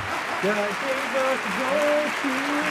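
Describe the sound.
A steady wash of crowd applause from a sound effect, clapping evenly throughout at a moderate level, with voices calling out over it.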